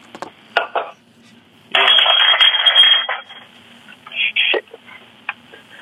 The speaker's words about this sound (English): Shit. What was that? You dropped something? Yeah. Sound like glass. Yeah. Yeah, I kicked something.